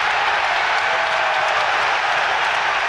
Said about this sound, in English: I like the way he said such noise and then just let the noise of the crowd go in.